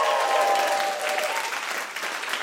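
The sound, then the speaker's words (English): A round of applause from a live audience for the news that Jessica Fostekew is engaged, steady dense clapping that holds fairly loud for a couple of seconds and eases slightly toward the end, with faint murmuring underneath. “Such a weird thing to get a round of applause for that on a feminist podcast, but it is to another woman, so it's fine.”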